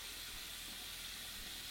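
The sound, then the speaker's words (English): Water runs in a steady, even hiss while someone washes their face with a pumped, lathered everyday face wash, with no voices and no distinct splashes or pauses across the short stretch. “I'm going to do it right now for you, live time. Okay, first product, everyday face wash.”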